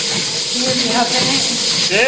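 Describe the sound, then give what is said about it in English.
A woman's heavy, huffing breaths as she runs on a treadmill at the gym form a loud, steady breathy hiss through the whole stretch, with faint voiced murmurs rising underneath and a brief tonal sweep near the end. “Hear her huffing it?”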